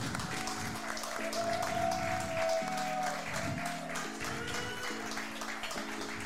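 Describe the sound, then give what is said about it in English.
Steady audience applause at the end of a show fills the whole stretch, a dense wash of clapping that stays loud throughout, with a stepping low musical tone and a brief sliding whistle beneath it. “Yeah, thank Claps you.”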